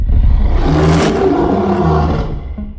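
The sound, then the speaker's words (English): A modern recreation of a 1933 film monster roar: mixed lion and tiger growls played backwards swell and growl continuously for a few seconds, loud, with low human grunts mixed in and no speech. “Then what they did was reverse the tape and sprinkled in a few human grunts. Here's our modern recreation.”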